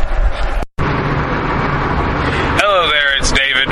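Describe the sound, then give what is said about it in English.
Steady low road rumble and engine hum fill the cabin of a car on the way to San Diego Comic-Con International 2011, broken by a brief dropout; near the end a wavering, voice-like tone rises above the drone. “I am in the car on the way to Comic-Con, San Diego Comic-Con International 2011.”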